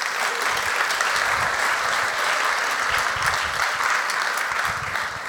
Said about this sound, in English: You can clap him if you want.